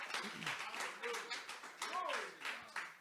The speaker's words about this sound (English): And if you're thankful for that, I want you to give the Lord a hand clap of praise.